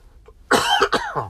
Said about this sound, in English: Excuse me while I cough for a second.